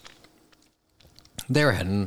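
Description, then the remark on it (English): Soft, moist chewing on a donut and mouth clicks sound for about a second. A brief pause follows, then a loud, drawn-out voiced sound cuts in. “I'm chewing on a donut at the same time.”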